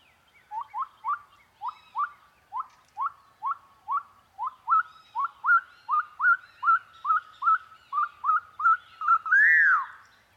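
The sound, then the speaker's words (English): A pyrrhuloxia, barely visible in the growing darkness, builds up to its song with a long, steady series of about twenty quick, rising, excited musical whistles, clear and building in intensity, ending on a louder, drawn-out note. “a Pierocchi building up to his song with an extended series of excited musical whistle notes.”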